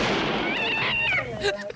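A cat under a tree gives a drawn-out, wavering meow that rises and falls in pitch over a noisy background, ending with a brief muffled thump.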